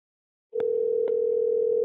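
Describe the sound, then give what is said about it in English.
After a brief silence, a steady electronic telephone ring tone on an outgoing call to a man's phone number sounds through the line, one continuous, moderately loud burst running to the end with no voices. “the phone number that Dennis gave to Dallas still worked. We tried him again and again”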